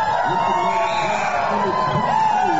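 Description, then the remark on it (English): A sports crowd, the Harden crowd, roars steadily, a dense wash of many overlapping voices with occasional rising shouts and whoops, holding an even loudness throughout. “The Harden crowd behind us. I love it.”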